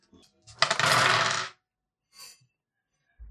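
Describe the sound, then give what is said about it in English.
A burst of eight dice clattering and tumbling across a hard table for about a second, followed by a brief, quieter rattle as they settle. No one speaks. “You gotta roll it again if you want to.”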